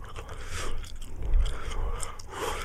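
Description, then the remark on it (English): Wet chewing with soft crunchy bites, followed by a swallow, with no talking over it. “Are you going to swallow it, right?”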